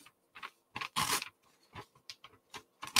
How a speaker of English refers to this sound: So if I were to take this piece of paper right here, right? So we got this full piece of paper if I'm on camera, and I were to rip it in half.